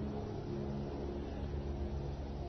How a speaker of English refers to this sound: Can't get rid of the helicopter, but you can you can just block it out, you know.